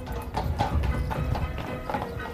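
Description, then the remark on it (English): Horse hooves clip-clop in a steady, moderately loud rhythm over a low rumbling background, the regular clatter of a horse-drawn landau carriage arriving. “Here comes the landau.”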